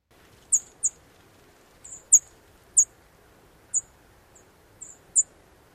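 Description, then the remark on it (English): A series of thin, very high-pitched bird alarm calls, a sparrow's sharp tseep notes repeated irregularly about eight times, clear over faint background hiss. “Like many sparrows, they also have an alarm call that is high-pitched, hard to set.”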